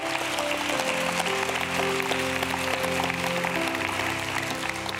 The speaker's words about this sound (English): Come on, rejoice right now. Come on, clap for Him right now.